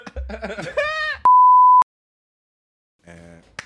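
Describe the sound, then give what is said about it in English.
A single loud, steady electronic beep lasts about half a second. Voices talk just before it, then silence follows until speech resumes. “Next. Beep.”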